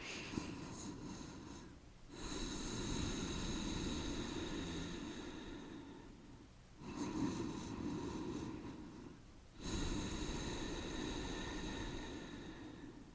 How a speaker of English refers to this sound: so basically when I'm teaching it in a class, I just tell my students, bring your tongue to the roof of your mouth, breathing in and out through your nose and constricting the back of the throat. So it sounds a little something like this.